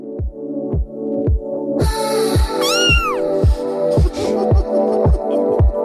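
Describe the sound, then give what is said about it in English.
A cat's meow sound effect plays loudly over a song on the radio station Red FM in Cork, with a steady musical backing and a regular thumping beat. A second, drawn-out mewing cry rises and falls partway through, with no one talking. “Dogs up and down the nation going nuts this morning.”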